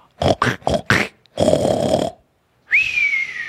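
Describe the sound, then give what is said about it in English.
A person imitates a snore: four quick snorting bursts, a long rasping inhale, then a brief pause before a loud, high whistle that rises sharply and slowly falls. “Like a whistling pig.”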